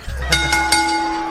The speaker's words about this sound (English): All right, ring the bell, son.